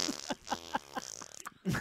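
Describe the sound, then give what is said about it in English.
A long, buzzy fart lasting over a second, sputtering in a steady series of pulses before trailing off, with a brief burst of noise at the end. “That was a long one.”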